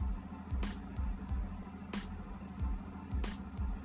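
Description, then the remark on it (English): A parked car's engine idles with a steady low hum, broken by regular soft thumps and clicks recurring about every half second, moderately loud, with no talking, while someone sits in the car getting ready to take a COVID self-test. “Sitting here, the car's running.”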